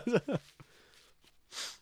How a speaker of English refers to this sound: Okay. Sorry about that. I've decided I'm not going to blow my nose on stream anymore because I watched it back the other day. I was like, that's disgusting.